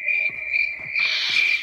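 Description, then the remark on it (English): A steady, shrill chorus of crickets chirping without pause, a high trilling drone with faint pulsing swells, heard alone with no voices. “Here we go. This is going, crickets.”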